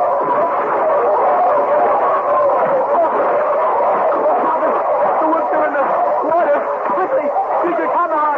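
A loud, dense chorus of wolves barking and yipping together, overlapping calls piling up continuously for the whole stretch with no pauses, frantic.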